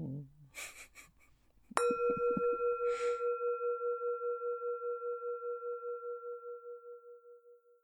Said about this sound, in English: And so we're going to just start with one breath, and then we'll hear our bell, our chime. Bong.